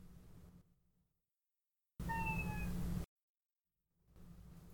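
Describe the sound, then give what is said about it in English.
A single loud, drawn-out meow from a local female cat, about a second long, set between stretches of silence and faint background hum. “As the local cat attacks again.”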